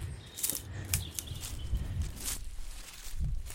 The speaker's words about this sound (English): So we're just walking up a single track in a kind of thick forest of spindly trees above us, and they're swaying in the wind. Primroses between our feet. Yeah. It's all a bit overgrown, but there's this track which seems to stay pretty open.